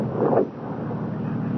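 A car engine rumbles, swelling briefly in a louder whoosh before easing down into a steady low hum as the vehicle slows, with no voices.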